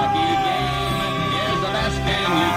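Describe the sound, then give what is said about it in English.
Truck horns blare in long, sustained tones at the Trucker Freedom Convoy over a steady crowd of people cheering and whooping, with music faintly mixed in; the whole din stays loud and unbroken throughout. “But you can just hear there's honking, there's people cheering.”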